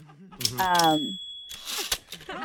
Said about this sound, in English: I'm sorry, it sounded like a typewriter. Oh, yeah, yeah, it is a typewriter. I'm just writing down what you're telling me.